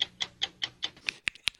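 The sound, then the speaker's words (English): A stopwatch ticking plays alone, about five even ticks a fraction of a second apart, followed by a few sharper, quicker clicks at the end. The sound is fairly quiet. “Just seconds on a clock ticking?”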